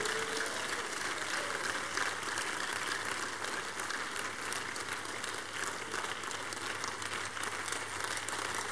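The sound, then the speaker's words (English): A church audience claps in praise to the Lord during a revival service, a dense, steady wash of many hands applauding together for several seconds, with a low constant hum underneath and no voices. “Give him a great revival order of clap of praise.”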